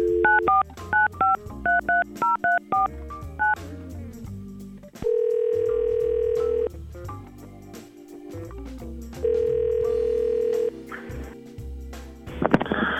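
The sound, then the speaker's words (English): A quick run of about a dozen touch-tone keypad beeps, followed by two long, steady ringing tones separated by a pause, with faint background noise and no voices. “We're going to try to call Mark right now and get his side of things.”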